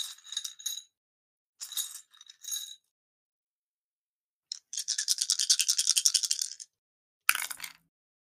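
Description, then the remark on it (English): Five twelve-sided dice, rolled for damage in a tabletop role-playing game, clatter in a few short bursts, then a longer, steady shaking rattle, ending with a sharp clack as they land and skitter on a hard table. Fairly quiet, no voices. “I hate my dice tonight.”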